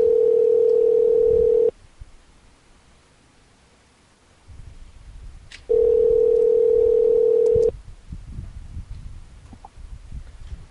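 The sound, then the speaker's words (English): A phone ringback tone while calling a cell phone, a steady electronic hum sounding twice in about two-second bursts with a silent pause of several seconds between them, heard clearly with faint background rustling. “I'm going to try calling her cell phone.”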